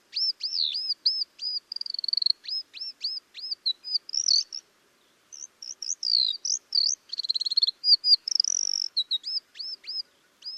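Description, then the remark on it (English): Two ground tits calling back and forth in China, a lively run of high, repeated chirps and whistled notes with brief pauses, clear with no other sounds. “But here's a recording made in China, and I think there are 2 ground tits vocalizing here.”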